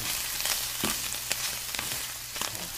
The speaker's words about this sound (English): Well, I've got a chicken with a morel stuffing, and I'm going to saute those on top of the stove right now.